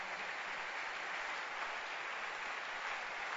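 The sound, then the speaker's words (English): An audience claps steadily in praise of God, a dense, continuous wash of many hands that holds an even level throughout without rising or fading. No voices come through. “Don't stop clapping.”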